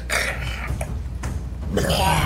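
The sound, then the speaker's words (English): A person makes a long, loud, croaking burp sound with their voice, drawn out over about two seconds, with no words spoken. “Just burps out lightning.”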